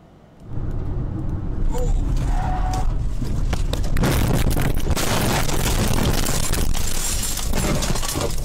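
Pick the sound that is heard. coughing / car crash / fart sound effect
car crash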